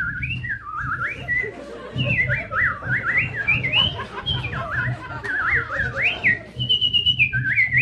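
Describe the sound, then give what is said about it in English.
Someone whistles a continuous, warbling imitation of birds singing in a garden, with quick rising and falling chirps and trills running for several seconds over a low, steady background rumble. “All I can hear out in the garden is the merry song of every bird in the bird kingdom.”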